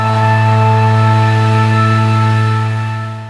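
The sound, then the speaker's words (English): A loud, steady motorized drone with a strong buzzing hum and airy rush holds constant for a few seconds before easing off slightly at the end, from leaf blowers running, heard while cycling along the National Cycle Route into Ayr. “And many leaf blowers.”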